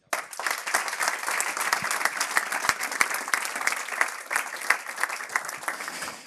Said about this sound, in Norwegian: Takk skal dere ha. Entusiasmen jo økende. Skal jeg tolke applausen?